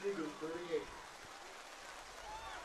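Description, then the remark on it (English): Steady, dense hiss of heavy rain pouring down outdoors at Zeeland Stadium during a ball game, raining harder and harder, continuous throughout, with indistinct voices murmuring briefly at the start beneath the downpour. “And it just keeps raining harder and harder here at Zeeland Stadium.”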